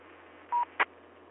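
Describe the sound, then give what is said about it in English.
A ham radio repeater beep after an operator's quick reset: one short, steady mid-pitched tone, followed a moment later by a brief, harsher burst, both set against a low background hiss and hum with no talking. “Okay, I heard a beep there, so hopefully you're able to hear me okay”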